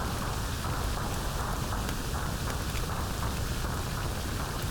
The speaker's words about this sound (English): The next doorway leads you to the cab of the train. The furnace blazes and crackles.